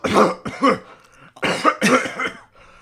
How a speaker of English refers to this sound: Oh, it's the miasma, and you guys immediately start choking and coughing.